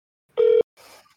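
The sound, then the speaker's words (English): A single short electronic ring from an outgoing iPhone call, a loud steady buzzing tone lasting a fraction of a second, followed by a brief soft hiss of line noise with no one picking up or speaking. “And she won't answer her phone.”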